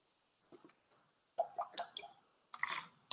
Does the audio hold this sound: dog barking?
no